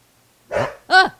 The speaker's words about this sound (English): Sorry, that was Barney. No, his name is not Barney. It's Buddy. Buddy barking at Nala. Don't do that, Buddy.